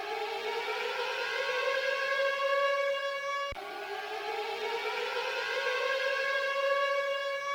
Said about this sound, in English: those sirens mean that it is time for Sagan Watch